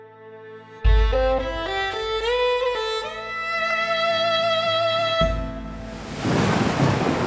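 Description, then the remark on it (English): A swelling musical passage gives way to the steady roar of a violent early-morning storm off the Massachusetts coast, with rain and rumbling thunder rushing in loudly for the last couple of seconds. “It's early morning, December 10th, 1773, and a brigantine ship called the William is caught in a violent storm off the Massachusetts coast.”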